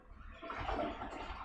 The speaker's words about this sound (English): They flush the toilet?